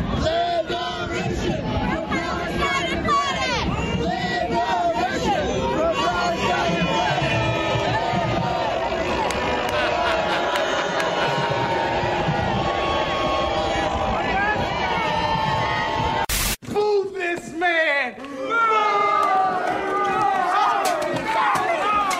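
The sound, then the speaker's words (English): A large crowd of families at the Macy's Day parade erupts in loud, overlapping shouts and jeers against Palestine protesters stopping the parade, many voices yelling at once, continuous and agitated, with a brief break before the clamor resumes. “When the crowd turns against them, you can audibly hear it, the reaction.”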